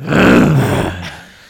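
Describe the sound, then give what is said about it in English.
A person imitates a rabid dog with a single loud, rough, snarling roar that holds for about a second before fading out. “like a rabid dog.”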